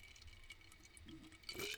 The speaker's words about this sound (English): Sorry, I got to drink my rum water. I really need to get mixers. This is my third podcast in a row where I'm I'm only drinking rum with water. So yuck.